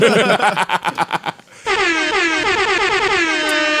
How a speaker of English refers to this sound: Let me get an air horn in that, man. Hold on. Let me turn up my air horns, man.